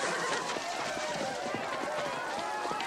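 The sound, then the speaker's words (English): A horse whinnies over a loud, steady rush of galloping hooves and commotion, with voices faintly mixed underneath, busy throughout. “Don't worry, I've got him under control. Get him off my horse!”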